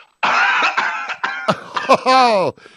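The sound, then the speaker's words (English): A magician lets out a run of loud, strained, throaty coughs, heavily voiced and hacking, as a deck of cards comes out of his mouth, ending in a drawn-out wavering groan before cutting off. “If those of you aren't watching, I don't know how the hell he did this, but he just coughed and a deck of cards came out of his mouth.”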